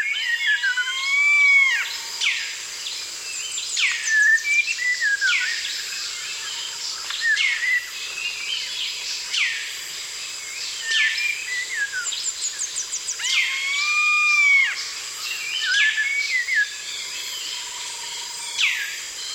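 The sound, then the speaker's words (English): A dense jungle dawn chorus along the banks of the Kinabathangan River in Borneo: many birds overlap in whistles, rising and falling calls and rapid trills, with a steady high insect-like buzz running underneath throughout. “Jean Rocher recorded this dawn chorus in the jungles along the banks of the Kinabathangan River in Borneo.”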